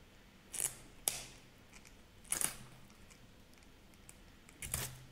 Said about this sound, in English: So, this isn't the best tool, but it's one of the most satisfying. It's like popping bubble wrap, but you're just making sparks. But I'm going to warn you to be careful, because these are actually burning my fingers.